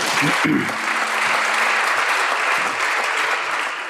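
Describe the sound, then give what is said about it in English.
Sustained applause from a large group of members of the Italian parliament clapping in solidarity after Mario Draghi's speech, a dense, steady wash of many hands clapping at once, loud and continuous throughout with a brief murmur of voices at the start. “To fill the silence, MPs start clapping in solidarity.”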